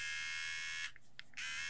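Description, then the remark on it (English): A Manscaped Lawnmower electric body hair trimmer buzzes steadily with a bright, rasping motor hum, cuts out briefly with a few faint clicks, then switches back on at the same pitch. “We got the lawnmower, the Manscaped lawnmower.”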